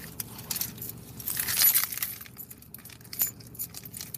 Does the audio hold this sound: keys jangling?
yes